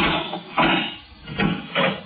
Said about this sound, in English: You see the door? Airtight. Airtight, yes, indeed. I'll open it.